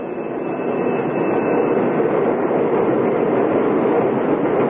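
An electric commuter train rolls in to a stop at a platform, a steady, dense rumble of wheels and motors that holds at an even loudness throughout, with no voices.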